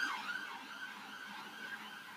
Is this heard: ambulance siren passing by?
yes